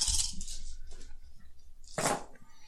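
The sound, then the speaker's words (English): A handful of dice clatters and rattles as they are rolled during a game, in two short bursts, one at the start and another near the end, fairly crisp, with quiet stretches between. “And there's your handful there of dice.”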